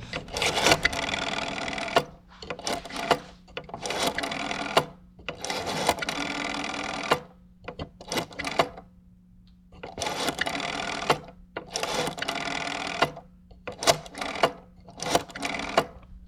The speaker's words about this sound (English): I love the sound of the dial on the phone itself.